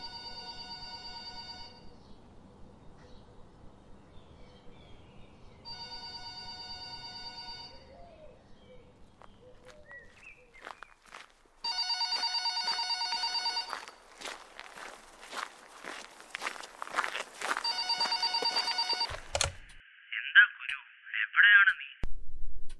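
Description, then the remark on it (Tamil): A phone ringtone sounds at home, where painting work is going on, in loud, tonal bursts that repeat about every six seconds, with shuffling footsteps underneath and some clattering and knocking between the later rings. “இவ்வளோ காலில் ஃபோன் பண்ணி எங்கே இருக்கேன்னு கேட்குறீங்க?”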